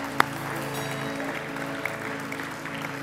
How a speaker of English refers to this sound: wonder if we can put our hands together this morning and give God a cheer.